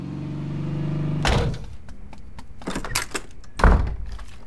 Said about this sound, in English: You're slamming my door for no reason now?